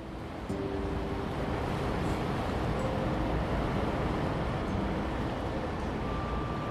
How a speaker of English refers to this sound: As the boat continues to float along, you hear the lapping of the waves against old brick palaces.